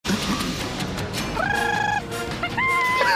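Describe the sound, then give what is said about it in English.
Two people imitate wild bird calls to communicate with each other: loud, squawking, warbling hoots, rising and falling, the second and third calls held longer, over a busy, noisy background. “… and … communicating like wild birds.”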